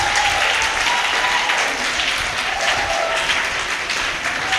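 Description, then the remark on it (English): The Abundant Grace Church audience claps their hands for a visiting woman of God in steady, sustained applause, a dense wash of overlapping claps that stays loud and even throughout, with a faint tonal hum underneath. “Abundant Grace member, can you clap your hands together for this woman of God?”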